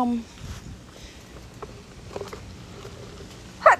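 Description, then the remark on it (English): A single sudden sneeze bursts out near the end, loud and sharp after several seconds of quiet, faint rustling and soft background noise. “Oh, God bless you.”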